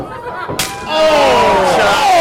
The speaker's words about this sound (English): Every chop Rough Crossing hits him with just sounds off the walls in the arena here tonight.